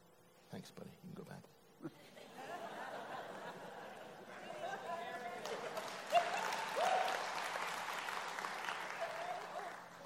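A few brief spoken sounds open, then an audience breaks into sustained applause that swells louder midway and keeps going steadily to the end, with dense clapping.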